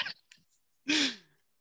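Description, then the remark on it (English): A stifled sneeze held back: a couple of faint sharp catches, then a single loud, compressed burst with a brief squeaky voiced edge that quickly fades. “Like I don't do that ever, but it's like I was just trying to hold one in.”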